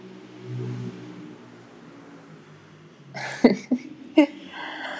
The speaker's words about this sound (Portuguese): Vamos deixar a moto passar.